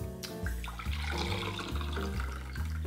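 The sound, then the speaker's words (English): Filtered water streams steadily into a glass for a few seconds, filling a full glass, a continuous splashing pour with a rising tone as it fills, clear with no talking. “Pour a full glass.”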